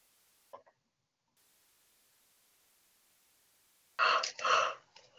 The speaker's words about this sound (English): And I'm feeling the shifts here with my yawning.